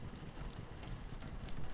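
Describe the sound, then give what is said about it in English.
Steady rain falls in a dense, continuous patter, with soft crackling drops and brief brighter splashes over a low rumbling wash, at a moderate, even level with no voices. “You can hear the sound of the rain and the foghorn, and you feel the cozy easy chair beneath you wrap perfectly to your body.”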